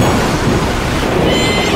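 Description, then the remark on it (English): A loud, steady roar of a thunderstorm, deep rolling thunder mixed with a dense wash of rain or surf-like noise, continuous with no voices. “Storm coming.”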